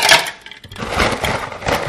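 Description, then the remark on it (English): A rattling clatter of ice cubes tumbling into a bowl holding about three cups of water for a test of the second law of thermodynamics, bright clinks and splashy knocks in two bursts separated by a brief pause, fairly loud, with no talking. “Now we're going to put a bunch of ice.”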